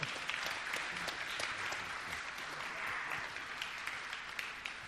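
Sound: audience applause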